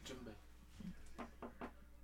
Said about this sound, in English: Nah, he just had to tap the glass. Wait, hold on. He was sleeping.